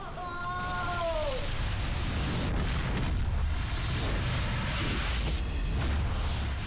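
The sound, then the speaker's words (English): Sound effects of big explosions and fire: a dense, continuous roar of crackling fire fills the scene, with deep explosion booms rumbling underneath and a falling whistling tone at the start, loud throughout. “Big explosions, big, huge, wonderful fire effects, and the terrible moment for Corazon, really.”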